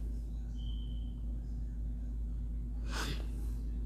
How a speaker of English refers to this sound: I got to sniff with y'all. I'm sorry.